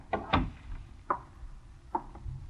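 The door to a reception room in a doctor's office is being closed: a couple of quick wooden thumps at the start, then a few separate knocks and clicks spaced out, with no one talking.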